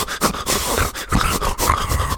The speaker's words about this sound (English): I'm going to have to clip some of that breathing sound and put it in here.